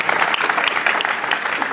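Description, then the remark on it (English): A crowd claps steadily for a couple of seconds, a dense, even patter of many hands that stays loud throughout. “No golf claps, real claps.”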